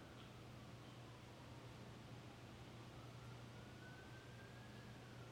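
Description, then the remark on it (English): A faint siren wails steadily, its pitch drifting slowly as emergency vehicles pass by outside, with a low constant hum and light background hiss underneath. “Ironically, as sirens go by, right?”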